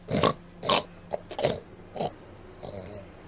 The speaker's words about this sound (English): And the snoring continues.